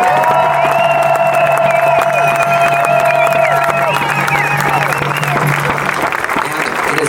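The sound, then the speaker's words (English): An audience applauds and cheers steadily for the youth committee heads and helpers at a youth-organized event, with dense, loud clapping and scattered whoops and shouts rising above it, over a low steady hum and some background voices. “Let's give each and every one of our youth committee heads and everyone who helped us with this a round of applause again, please.”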